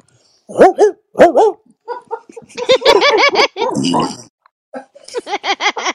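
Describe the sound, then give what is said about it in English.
A person sings and chants a song's line, then lets out a quick run of loud, rhythmic woofs, a voice imitating a dog barking rather than a real dog. “Somebody let the dogs out. …? Woof, woof, woof, woof.”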